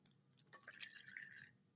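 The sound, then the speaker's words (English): A quiet sip of water from a 32-ounce Hydro Flask insulated bottle: a brief wet slurp with soft liquid trickling, lasting under two seconds, with no one talking. “I'm currently drinking from my 32-ounce hydro flask, which I drink 4 of a day.”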